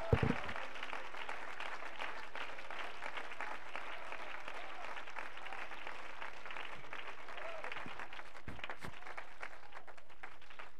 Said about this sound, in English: Somebody clap your hands and magnify the Lord.